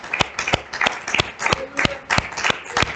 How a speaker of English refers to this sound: Let's clap our hands one more time for Jesus, shall we? Praise him together. Hallelujah.